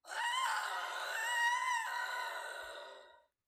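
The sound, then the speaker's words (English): A person's voice imitates Peggy's scream of horror on seeing a dead pig's corpse at the door, a single loud, sustained, high-pitched shriek lasting about three seconds before cutting off abruptly. “And Peggy gets up and she opens the door and she sees the corpse of a dead pig and she screams.”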